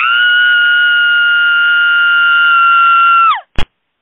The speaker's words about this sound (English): Imagine if we suddenly heard a blood-curdling scream.